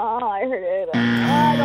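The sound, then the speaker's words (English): A voice with rising and falling pitch, then a loud, harsh buzzer cuts in abruptly and holds a steady, rasping tone for nearly a second, with a voice still audible over it. “comes in with the hard buzzer, too.”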